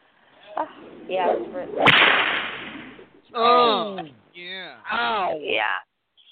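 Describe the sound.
A single loud whip crack, given as a punishment, snaps out sharply and trails into a brief hiss, with voices crying out and reacting before and after it.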